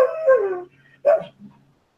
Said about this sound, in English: Yeah, here, Archie. Archie, lay down. All right, let's attempt to do a podcast with my howling dog here.